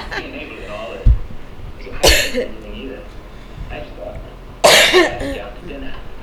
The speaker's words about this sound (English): Sorry, guys, I still have my cough. But I am negative.